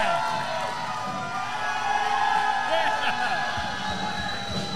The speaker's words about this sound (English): They're cheering for you, Bison. Yeah.